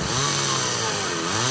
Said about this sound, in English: You wouldn't operate a chainsaw blindfolded.